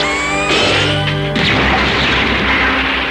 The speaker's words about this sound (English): With the pointing of his finger, he shoots a laser at the crane's pulley line, severing it, which sends one of the columns crashing to the ground.